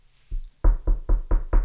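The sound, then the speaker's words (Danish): A soft tap, then five firm, hollow knocks in a quick, even rhythm, fairly loud, with no one talking. “Eller en lille bankeånd.”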